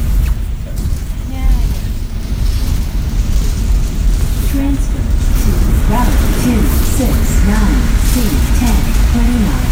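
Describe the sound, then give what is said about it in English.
An automated stop announcement plays inside a moving bus, the recorded voice saying which routes transfer at the stop, over a constant, heavy low engine rumble and road noise. “they are still fighting to get these recordings on the buses to let them know what stop they're at, whereas we've luckily had it for a while around here, I think.”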